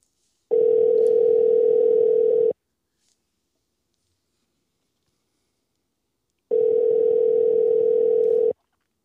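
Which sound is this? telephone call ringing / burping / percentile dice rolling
telephone call ringing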